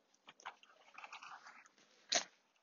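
A dog chews its food, with irregular wet, crunchy bites over a couple of seconds and one sharp, louder crunch near the end. No one speaks.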